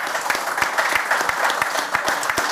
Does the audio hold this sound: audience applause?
yes